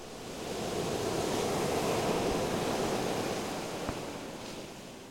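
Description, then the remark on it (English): Ocean waves break on a seashore of the Outer Banks in North Carolina in early summer, during sea turtle nesting season, in a steady, broad wash of surf that swells and slowly recedes, with a faint breezy hiss and no voices. “It's early summer along this seashore, and something spectacular is occurring.”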